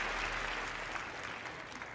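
Steady applause from a crowd, a dense wash of many overlapping hand claps that stays loud and even throughout without any voices.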